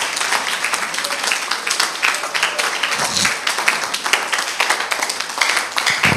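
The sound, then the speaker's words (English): An audience claps together in a dense, steady burst of applause lasting several seconds, the many overlapping hand claps blending into a continuous crackling roar that holds at an even loudness throughout. “Oh, give the Lord a clap a little.”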